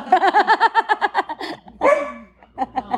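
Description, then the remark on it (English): A dog barks in a fast run of high, yappy barks, breaks into a brief whining yelp, then lets out a few more quick barks. No one speaks. “We got a dog show?”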